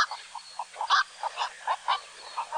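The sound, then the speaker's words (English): A black-crowned night heron gives a series of loud, hoarse calls, roughly eight harsh croaks in an uneven rhythm, heard alone. “These graceful, broad-winged water birds can often be seen in flight in the mornings and evenings, which is also the best time to hear their loud, hoarse call.”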